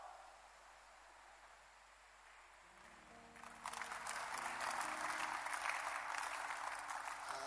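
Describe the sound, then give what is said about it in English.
An audience bursts into applause partway through, a dense, steady wash of many hands clapping that rises suddenly after a quieter murmuring start and stays loud to the end. “If you can clap again, I will remove you from the suspicion list.”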